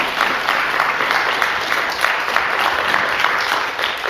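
An audience claps steadily, giving the Lord a round of applause, in sustained, dense applause, a loud wash of overlapping hand claps with no pauses for the full length and no voices standing out.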